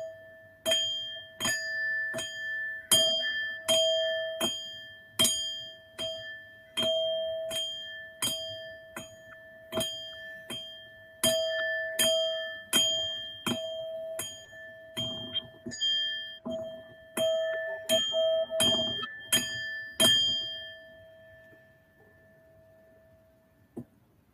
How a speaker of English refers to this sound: And we are listening to the sound. All attention is on the sound. When your mind drifts off, bring it back to the sound of the bell.